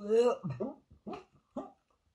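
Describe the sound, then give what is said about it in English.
A person vocally imitates a cat or a dog hacking up a furball: a strained, voiced retch, then three short choppy gagging bursts, fairly loud, with no other talking. “Or you'd just like, be like a cat or a dog coughing up a furball.”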